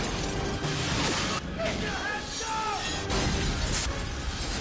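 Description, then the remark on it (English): A glass house blows up: glass shatters and crashes in a dense, noisy burst that keeps going for several seconds, with bright tinkling and clattering fragments scattered throughout and a few brief ringing tones. “Ah, the problem with glass houses. So fragile. When they inevitably blow up.”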